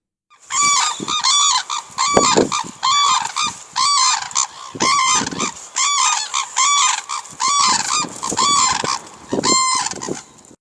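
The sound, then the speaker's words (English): Red-crowned cranes in Hokkaido, recorded in December 2006 on a cell phone, call loudly in rapid, overlapping bugling bursts, harsh and ringing, repeating steadily for about ten seconds with brief pauses, while low gusts of wind rumble underneath. “Red-Crowned Cranes #2 - Hokkaido, Dec 2006”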